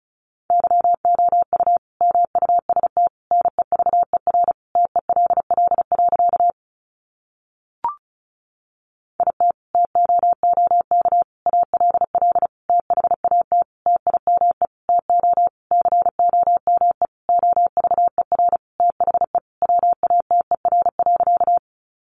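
Rapid Morse code at about 35 words per minute, sending sentences built from the top 300 words, a steady mid-pitched tone keyed in fast bursts of dots and dashes, pausing briefly near the middle before resuming. No voices.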